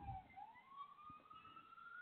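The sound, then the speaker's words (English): Emergency vehicle sirens pass by outside, heard from the 14th floor of a building, the wailing tone sliding slowly upward, muffled, over a low rumble of city traffic. “So off to get sirens going by up here on 14th floor.”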